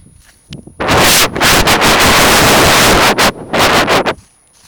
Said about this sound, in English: Oh, no. It's windy!